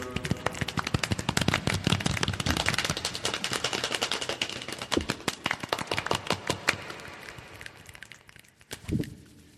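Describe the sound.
A group imitates the start of a rainstorm, the sound going around in a circle, with a dense, crackling patter of many overlapping snaps and taps, busy throughout and thinning toward the end, where a single louder thump sounds.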